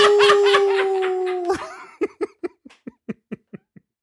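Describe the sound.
A person imitates a werewolf with a long, steady howl that sags slightly in pitch, then dissolves into a string of short, rhythmic bursts of laughter, fairly loud.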